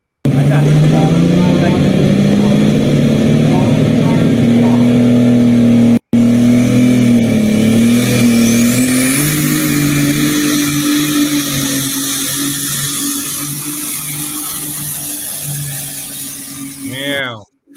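A pulling tractor engine roars loudly and steadily, its pitch climbing and wavering as it strains under load, then gradually fades before cutting off abruptly near the end.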